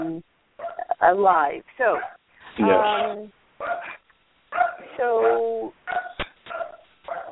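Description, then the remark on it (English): A dog barks and yelps at a caller's house during the live BDPA iRadio Show, in a string of uneven bursts with short pauses between, sounding muffled and thin, as if picked up over a phone line. “And that there's a barking dog, but that's okay, because what that says is that BDPA iRadio Show is going on live.”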